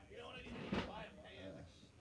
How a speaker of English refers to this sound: What's that effect? Oh, it's a heavy chair. We got some construction going on.